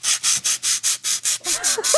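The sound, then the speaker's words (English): A contestant's harsh, scratchy game-show buzzer pulses in eight quick, even bursts, squeaking like styrofoam rubbed together, with faint chirpy squeals creeping in near the end. “That buzzer sounds like styrofoam moving together.”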